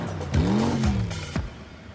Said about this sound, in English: I was on the highway, me and my kids. No one stopped to help us. And along came this strange car.